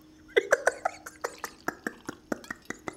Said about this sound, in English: I'm pouring myself an Ardbeg Islay single scotch, a single malt scotch whiskey 10.